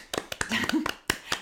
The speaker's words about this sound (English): Round of applause for Donna, honestly.